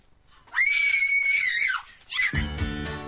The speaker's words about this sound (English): You've been selected to perform on the show. Stop screaming.